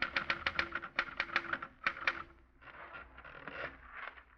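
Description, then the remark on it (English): Rapid, sharp typewriter keystrokes clatter in an irregular burst for a couple of seconds, then give way to a softer, denser mechanical rattle. No voices. “You finish the book, get out of bed hurriedly, and sit down at your typewriter.”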